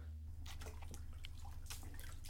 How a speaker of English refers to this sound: A little bit of bath time fun. Splashing the bath. Bath time fun.